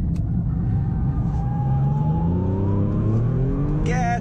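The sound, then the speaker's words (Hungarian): A car engine roars loud as it accelerates, its pitch climbing steadily for several seconds before a quick shift near the end, like a gear change. “Szeretem ezt az autót, hát milyen autó ez?”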